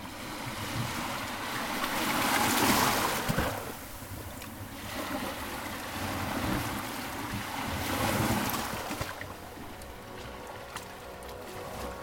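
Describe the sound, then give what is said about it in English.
Waves wash up and draw back over a sandy shore in slow, broad surges as the sea ebbs, leaving wet sand and white foam residue, swelling and fading about every few seconds with a hissing, frothy wash and light wind. “The sea ebbing, leaving wet sand and white foam residue.”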